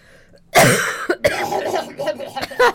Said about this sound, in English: I need to cough.